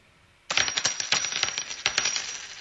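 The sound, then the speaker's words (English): Dice clatter and rattle across a hard surface as a player takes a turn in a game, a quick burst of bright clicking taps that starts abruptly, tumbles for a couple of seconds, and stays fairly loud. “it's your turn to roll. Roll the dice.”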